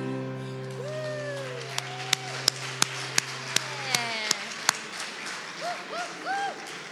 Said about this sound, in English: I've never figured out the etiquette. Like, sometimes I just clap for myself. Yay, we made it. I did it. Woo-hoo.